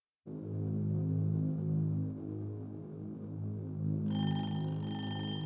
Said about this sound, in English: Clay set his alarm clock for 5 a.m.